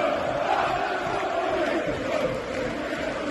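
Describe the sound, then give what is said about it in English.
A packed football stadium crowd at Kenilworth Road, an old-school ground, roars and chants in a dense, sustained wall of voices, loud and continuous throughout with no single speaker standing out. “And the noise when the crowd are up for it is pretty wild.”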